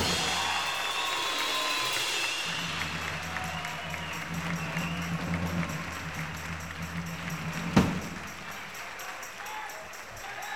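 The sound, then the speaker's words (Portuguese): Steady audience applause for the promoter Graham fills the whole stretch, a dense wash of clapping over a low hum, with one sharp loud crack near the end before the clapping thins a little. “Let's give Graham a big hand.”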